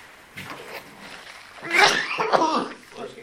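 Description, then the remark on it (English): A sudden sneeze-like burst, sharp and breathy, comes after a few quieter breaths and throat sounds, then fades into a short rustle. “not to sneeze, but I really want to encourage you to work on breaking down the Scripture.”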